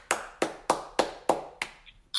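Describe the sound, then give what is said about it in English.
Sharp, loud hand claps in a steady, even rhythm, about six in a row, followed by a couple of softer, less regular claps at the end. No one speaks. “Hey, yo, if you ever shoved a garbanzo bean up your nose and never came out, clap your hands.”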